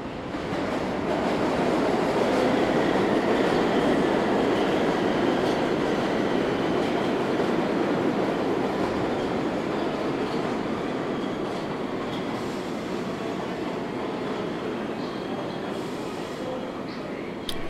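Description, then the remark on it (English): A subway train roars steadily through the 50th Street subway station in New York, on the line down to South Ferry, a loud, continuous rumble and metallic rattle that holds almost unchanged for the whole stretch, with faint voices buried in the din. “I'm now stood on the 50th Street subway station, waiting for a train to go down to South Ferry.”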